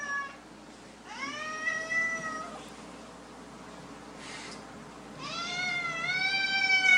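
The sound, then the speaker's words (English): An angry cat in a Russian video being played lets out two long, drawn-out yowling meows, the second rising louder and more strained, with a soft rustle between them against a steady low background hum. “You don't want to mess with a cat. You don't want to taunt a cat.”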